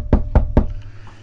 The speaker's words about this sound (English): I hear you knocking.